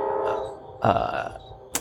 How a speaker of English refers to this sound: Excuse me for the train.